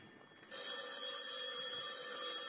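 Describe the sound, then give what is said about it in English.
A telephone bell rings loudly and continuously in Lieutenant Clover's office, starting abruptly after a brief moment of quiet and holding a steady, shrill metallic tone to the end, with no voices. “Telephone's ringing”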